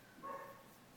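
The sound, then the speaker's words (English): A single faint dog bark sounds, brief and muffled, then fades into quiet background noise with no one talking. “Let me know if you can hear dog barking”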